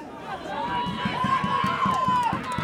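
A crowd cheers steadily throughout a tug of war pull between Strathern and Les Mahego, with rapid rhythmic thumps pulsing underneath and a thin, sustained whistling tone riding over the loud, dense roar.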